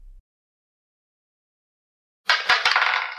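After a long silence, dice clatter suddenly: a few sharp clicks followed by a dense, bright rattling that continues to the end, fairly loud, with no voices.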